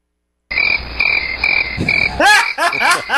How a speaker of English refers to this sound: Hey, I haven't heard the cricket button in a while.